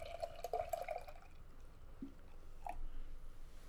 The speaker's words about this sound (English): Let's pour this beer up.